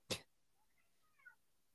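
A cat makes a short, sharp burst of sound, followed a moment later by a faint, thin meow with a rising and falling tone. No one speaks.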